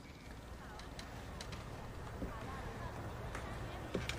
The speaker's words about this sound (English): Again, listen to the footsteps, the tension.